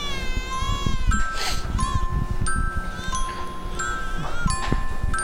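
A cat meows repeatedly, a run of loud, drawn-out wavering cries following one another over a steady rumbling background noise, with no talking.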